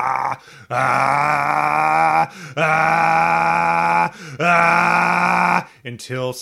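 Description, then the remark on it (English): Three long, loud, strained yells, each held steady for over a second with brief gasps between, a Dragon Ball Z-style power-up charging scream belted out with fists clenched and body hunched over. “Clench your fists, hunch over a little bit, and scream until kind of a fiery cloud goes around you.”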